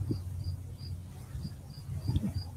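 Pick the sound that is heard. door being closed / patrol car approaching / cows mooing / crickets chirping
crickets chirping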